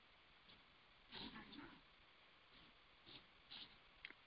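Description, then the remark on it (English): A voice on a phone connection dropping out as the phone goes into power save mode: near silence broken by a few faint, muffled fragments of speech that cut in and out, with nothing intelligible coming through. “When my phone goes to the save mode, you know, power save mode, my voice gets off.”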